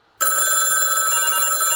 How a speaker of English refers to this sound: My phone's ringing, too.